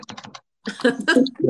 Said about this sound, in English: Oop, I heard the keyboard.